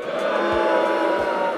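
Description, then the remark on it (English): A crowd boos about moving season in New York, in a steady, dense wall of voices that holds at an even, fairly loud level for a second or two, with no individual speech standing out. “Can we, you know, insert like a little cheering, like booing here to like, you know, demonstrate how we feel about that?”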